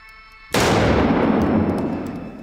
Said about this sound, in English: I'm going to bring the gun up, fire two shots, one for each target as fast as I can. Wow. And the gun must be cocked and fired for each shot.